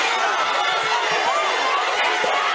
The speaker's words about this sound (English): This is one messy walk of shame as a man is led through an angry crowd outside his home.